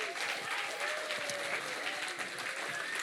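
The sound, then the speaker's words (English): A crowd claps steadily in dense, continuous applause that stays at an even, fairly loud level throughout, with faint voices and cheers mixed underneath. “So can we give these guys a round of applause?”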